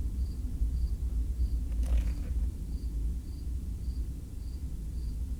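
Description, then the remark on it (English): A big plane rumbles overhead, a deep, steady roar filling the whole clip, while a cricket chirps in regular high-pitched pulses above it. No one speaks. “Big plane.”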